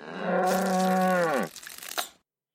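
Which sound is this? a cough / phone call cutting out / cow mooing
cow mooing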